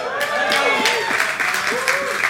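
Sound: audience applause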